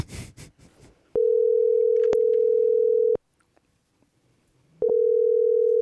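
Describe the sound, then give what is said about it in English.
A phone ringback tone on an outgoing call sounds loud: a steady electronic tone holds for about two seconds, breaks off into near silence, then starts again, after a brief burst of rustling. “So how many rings is that?”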